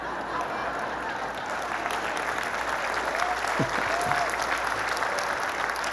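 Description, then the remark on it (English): An audience applauds steadily for several seconds, a dense, even wash of many hands clapping at a moderate level, with a faint voice briefly audible beneath it. “I knew that about half of you would clap to that.”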